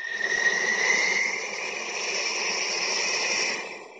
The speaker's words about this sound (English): Ah, the African savannah.